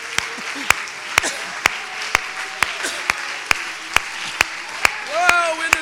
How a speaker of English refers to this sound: Let's clap our hands to the Lord here tonight.